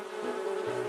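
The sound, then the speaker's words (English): A bee named Neo buzzes steadily, a continuous droning hum with a slight wavering pitch that lasts just under a second, with no voices. “It's our friendly neighborhood bee, Neo.”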